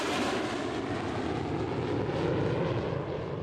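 A steady, loud airplane engine drones continuously, a broad roaring hum with a low rumble underneath and no voices, holding even intensity throughout.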